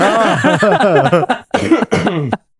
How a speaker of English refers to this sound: Like, I actually just want to pause so I could cough.